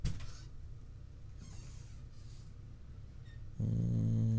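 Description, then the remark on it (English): Dogs make low, rumbling snorts and huffs for a few seconds, then one breaks into a loud, sustained, throaty growl at the end. No one speaks. “No, fucking dogs.”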